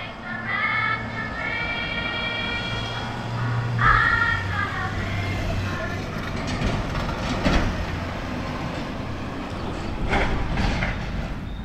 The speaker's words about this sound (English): That one was an actual FedEx truck. That's why it sounded so good. Way too much noise around here. It's in a parking lot.